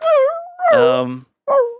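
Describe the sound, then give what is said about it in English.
A person imitates the pained yelps of a dog being shot in a film scene: three loud, whining cries in quick succession, the middle one longest and strained, with no other sounds around them. “Off camera, we see Preston's face, and he winces every time a bullet's fired, and a dog goes...”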